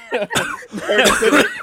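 A person with a lingering cough after being sick coughs several times in quick succession, harsh, raspy and loud, with brief gaps between the bursts and no talking.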